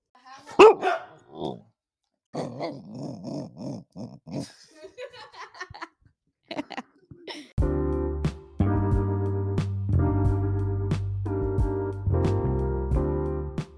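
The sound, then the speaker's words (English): A voice gives a few wavering, dog-like howls and yelps, the pitch rising and falling, before steady music with a beat starts up and carries on to the end. “Like a howl. A howl.”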